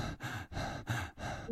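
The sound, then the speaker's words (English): A person breathes quickly and heavily, about five sharp, noisy breaths in rapid succession with no talking, imitating panicked, hyperventilating breathing. “So instead of a normal relaxed breath, my breath starts going.”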